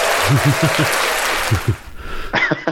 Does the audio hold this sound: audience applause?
yes